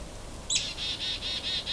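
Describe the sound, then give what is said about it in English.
A hairy woodpecker gives a squeaky, high-pitched call in a quick run of about six evenly spaced notes, faint and distant over a low outdoor hum. “That hairy woodpecker, which is that squeaky one in the distance.”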